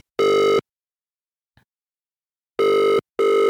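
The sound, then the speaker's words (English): A loud electronic ringing tone of an outgoing phone call sounds in short bursts: one buzz, a pause with a faint click, then two more buzzes close together, harmonic and steady, with no talking. “He's definitely sat waiting by the phone. Yeah, let's see if he's there. Hold on. Oh, that's loud, isn't that it?”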